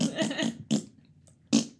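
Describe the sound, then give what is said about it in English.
A voice imitates farting with three loud, sputtering blasts: a long wobbling one first, then two short bursts separated by pauses. “And then they start farting.”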